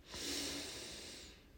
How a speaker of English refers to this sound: Put your hand on your belly. Try to get the breath down in there. So let's breathe in slowly.